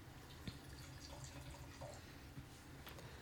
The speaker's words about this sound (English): Okay, so the next wine we are currently pouring is also one of mine.